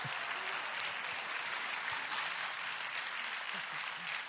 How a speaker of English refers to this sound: Oh, you can clap 100%. Hey, guys, as you're clapping and cheering on their story over here